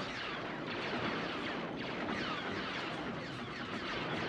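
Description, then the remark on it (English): Sci-fi blaster fire crackles over a dense, unbroken wash of battle noise, with rapid zapping shots layered at a steady, loud level throughout and no one talking. “Always like the sound of the blasters in this one.”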